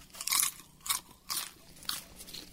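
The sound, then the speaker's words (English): Several crisp, crackly crunches of stovetop-popped popcorn being chewed, coming in bursts roughly every half second with brief pauses between bites, moderately loud and with no talking. “Good popcorn.”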